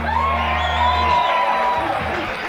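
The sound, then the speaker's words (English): A live audience roars with cheers and high whoops for a performer after a song, a dense wall of voices that stays loud throughout before tapering slightly near the end, with a low hum beneath the first half. “Can I get one more great round of applause”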